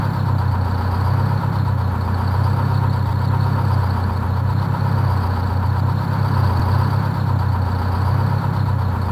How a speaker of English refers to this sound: I have some pretty good clips of the sound from the engine when we were having them. Please do. I'll try and splice it in around here.